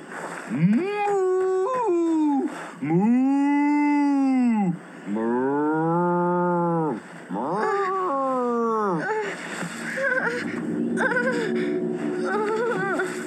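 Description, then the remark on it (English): A person imitates an angry cow, letting out several long, loud, strained moos with rising and falling pitch, followed by shorter wavering cries. “Be a mad cow.”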